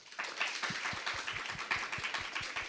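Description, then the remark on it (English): A comedy show audience claps to vote on whether Beetlejuice would come wet scabs, many overlapping hand claps forming a dense, even patter of applause that starts abruptly and holds at a moderate level throughout, with no voices. “But you know, clap if you feel like perhaps Beetlejuice would come wet scabs.”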